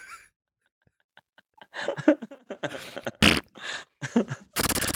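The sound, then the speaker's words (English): A string of raspy, sputtering fart noises played from a video, in uneven bursts, fairly loud, ending in a harsh, buzzy blast. No one speaks. “It's like it plays a fart.”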